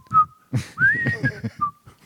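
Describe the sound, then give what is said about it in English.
A male toad's breeding call: a few clear, whistle-like notes with a rising, wavering pitch, over low rapid pulsing, moderately loud and without any talking. “Males vocalize during the breeding sessions in ways that their sisters recognize. And here's what it sounds like.”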